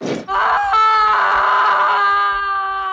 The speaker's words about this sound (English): Here's a big best scream we've had on the show in a long time.